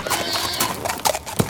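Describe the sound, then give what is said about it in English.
A horse whinnies while hooves clip-clop briskly away on a hard surface, the sharp hoofbeats loud over a brief moment, with a second neigh toward the end. “You dealt with the people, I'll deal with the horses.”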